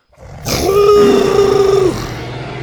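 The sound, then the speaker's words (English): A single loud, drawn-out roar from a T-Rex named Buck, lowering his head and growling at the jungle, with a rough burst at the start settling into a steady low-pitched rumbling growl that holds for over a second before cutting off. “They looked and saw the T-Rex lowering his head and growling at the jungle.”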